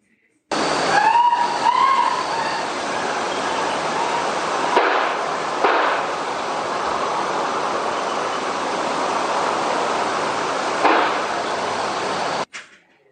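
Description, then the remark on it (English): Three sharp gunshots at a house cut through a steady hiss, two in quick succession and a third about 4 to 5 seconds later, with a woman's high, wavering scream rising briefly before them. “Three distinct gunshots right after you can hear a woman screaming.”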